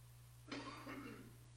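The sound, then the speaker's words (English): A short, muffled cough into a hand from someone with seasonal allergies, with two quick bursts over a steady low electrical hum and no talking. “Oh my gosh, he coughed into his hand, and I'll wash it.”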